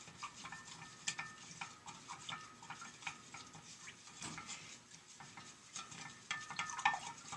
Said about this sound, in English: Then you take something that you stir. I like to use wood. And you pour the coarse sea salt into the water. And you stir and allow it to dissolve.